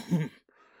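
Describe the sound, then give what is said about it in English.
A voice imitates a bull's heavy snorting breath: one gruff, throaty snort, then a short pause and a softer, airy exhale trailing off. “It sounds like there's a bull walking around outside, right outside your tent.”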